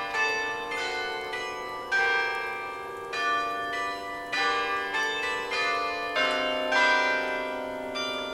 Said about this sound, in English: And the clock in the square strikes 8 o'clock.